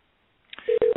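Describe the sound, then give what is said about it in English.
A steady electronic phone ringing tone starts after a brief click, holding a single pitch with a short break, as a person is added to a call, clear with no talking. “It sounds like it's ringing.”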